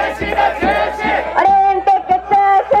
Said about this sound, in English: But if you were inside the billion-dollar stadium, empty of fans because of the coronavirus pandemic, apparently you could hear protesters with bullhorns outside screaming, "Stop the Olympics."